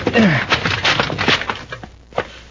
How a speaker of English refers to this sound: Try the door. Oh, he locked it. It's a rickety-looking door. One kick ought to break it.